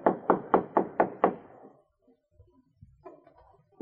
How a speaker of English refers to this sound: After nosing their boat into the beach, the travelers disembarked and walked up to the cabin. Art knocked on the door.